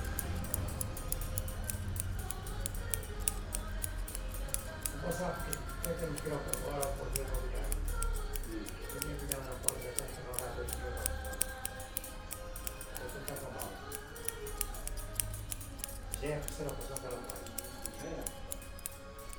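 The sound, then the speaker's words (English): A barber cuts hair in an old style with two scissors, snipping in a rapid, steady stream of metallic clicks that runs without pause, over a low murmur of background voices and room noise. “there was this barber and cutting hair in this some kind of old style.”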